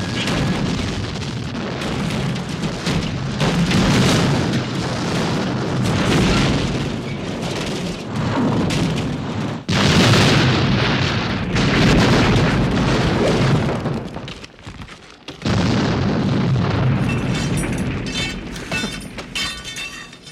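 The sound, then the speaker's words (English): A sustained cinematic crash sequence from a film, a dropship crashing: roaring booms, shattering debris and rumbling explosions, loud and dense throughout, with a brief drop near the end before another heavy burst. No one speaks. “So yeah, I think it's the ship, the drop ship crashing. That's absolutely what it after is.”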